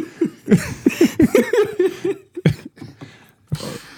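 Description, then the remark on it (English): A fairly loud run of raspy, voiced coughing bursts in quick succession, followed after a short pause by two sharper single coughs. “Quite the cough you got there, ….”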